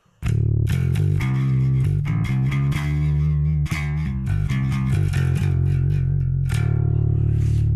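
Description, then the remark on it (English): A bass guitar played through a Kemper Profiler amp with a gritty, distorted tone plays a steady run of sustained low notes, loud, with no talking. “KEMPER PROFILER - Tones & Talks - PROFILER Player Bass'n'Acoustics”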